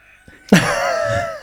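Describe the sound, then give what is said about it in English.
A cockerel, kept with chickens right behind a door, crows once, loud, a strained, sustained call lasting about a second, followed by the abrupt start of another cry right at the end. “There is, for those listening, right behind the door behind me, there are chickens and there is a cockerel.”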